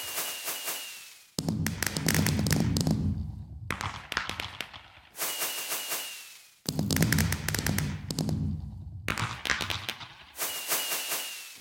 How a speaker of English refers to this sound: I love the sound effects. I love the look. I just think the fireworks in Minecraft are amazing.